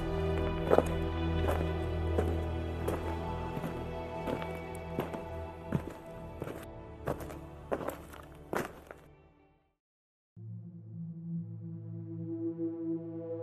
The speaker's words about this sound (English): The two of you keep walking, and all you can hear is the gentle echoing of your footsteps and the soft sounds of your own breathing.